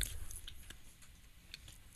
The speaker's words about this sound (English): Try not to chew into the mics, guys.